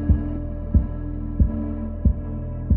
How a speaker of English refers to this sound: Throwing off the quilt, I leapt out of bed, dropped to one knee, and placed my hand on the cold floor, where I could feel the fast bump, bump, bump of a heartbeat vibrating through the wood.